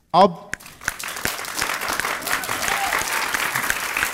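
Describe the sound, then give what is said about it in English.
A short vocal burst at the start gives way to a dense, steady wash of audience applause, many hands clapping at once and holding a fairly even loudness to the end. “Thank you for your claps, but I don't need them.”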